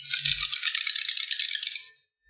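Dice rattle and clatter steadily for about two seconds, a dense bright rattling that starts with a soft knock and then stops abruptly. No one speaks. The dice are rolled for lightning damage during a tabletop role-playing game.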